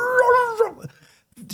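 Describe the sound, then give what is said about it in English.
A person loudly imitates a Doberman dog with one drawn-out, strained vocal cry that holds steady and then drops off sharply, followed by a short pause and a faint breathy sound. “She's a Doberman lover. And she had, and I heard that dog, and it was like, was going to.”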